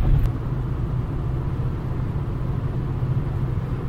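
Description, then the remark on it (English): A steady, low road rumble fills the inside of a car being driven at night, around 12:29 a.m., on the way back from a club in Seattle. It is a constant engine-and-tire drone with no voices and no breaks, holding at an even, moderate loudness throughout. “Some people are recording podcasts in their car. A lot of distracted driving.”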